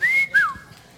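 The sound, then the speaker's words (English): A sharp two-part wolf whistle from a man at a woman: a high note that rises and holds, then a shorter note that swoops downward. It is clear and loud, with no talking. “I can't say that he did not whistle at her.”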